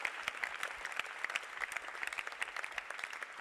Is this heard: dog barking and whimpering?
no